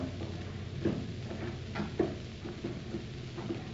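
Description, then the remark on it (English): A heavy wooden trap door is hauled open, with a few muffled knocks and scraping creaks spread over several seconds, fairly quiet, with no voices. “Here is the trap door.”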